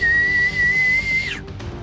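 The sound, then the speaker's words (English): A person whistles a signal: a single sustained, piercing whistle held at one steady high pitch for over a second, then cut off abruptly over a low musical background. “And he just whistles.”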